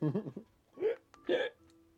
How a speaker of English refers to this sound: It's a weird hiccup.